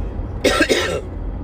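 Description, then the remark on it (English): A short cough with two quick bursts in about half a second, sharp and breathy, standing alone against a low background rumble with no talking. “And, no, that's just a cough. Just a little cough.”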